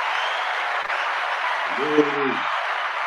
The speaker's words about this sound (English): Let's clap it up for that.